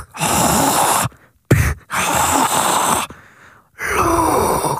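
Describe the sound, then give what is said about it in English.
A voice imitates Darth Vader's mechanical respirator breathing: loud, raspy, hissing breaths drawn in and pushed out, about three long strokes separated by brief pauses, with no talking. “Oh, hell yeah, breathe like Darth Vader.”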